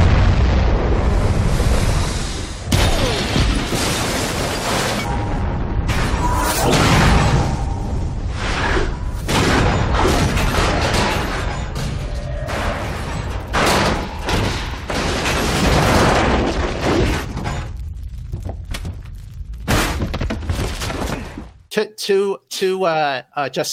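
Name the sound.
nuclear bomb explosion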